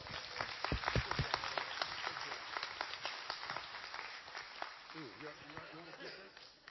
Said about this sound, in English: Can we give everyone a round of applause?